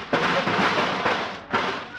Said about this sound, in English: Well, now that you smashed your car, I guess you can't go. Oh, yes, we can. We just dented the fenders.